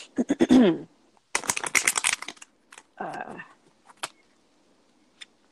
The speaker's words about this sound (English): So what I'm going to do is I'm going to shuffle the cards just 3 times.